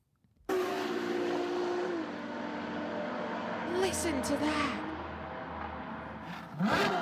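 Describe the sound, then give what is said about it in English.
A loud sports car engine roars steadily, its pitch shifting as it accelerates, then a sharp rev bursts out near the end; a voice speaks briefly over it. “Oh, got some revving there at the end of that clip. It is so nice.”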